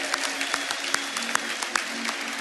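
A church audience applauds steadily for kids coming down to the front during a church service, a dense wash of many hands clapping with a few sharper individual claps popping out of the sustained noise.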